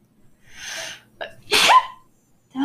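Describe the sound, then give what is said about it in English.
A single loud sneeze: a rising breathy intake, a brief catch, then a sharp explosive burst that trails off, with no talking around it. “Oh, wait, I have to sneeze.”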